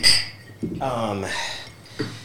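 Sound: glasses clinking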